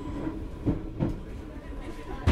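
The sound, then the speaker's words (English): A train sets off out of Brading station, a passing point, at the same moment as the Ryde Pierhead train in the other platform, with a steady low rumble and a few heavy wheel clunks at uneven intervals, heard from on board, with a faint constant hum underneath. “Both trains set off out of Brading at exactly the same moment.”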